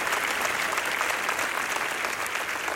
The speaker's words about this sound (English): Come on, let's give the young man a round of applause and appreciation.